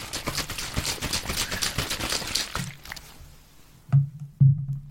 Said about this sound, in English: I will hit two bottles, an empty Lucozade, and a half full and a quarter full water bottle. I shall now shake the water bottle.